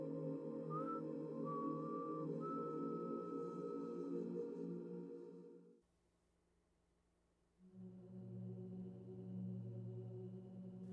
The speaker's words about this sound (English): he walked away, whistling Chopin's Nocturne in C sharp minor.